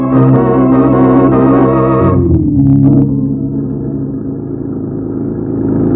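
A car engine roars loudly at speed on a highway, dense and steady, then drops to a lower, smoother drone as it keeps cruising along the road. No one speaks.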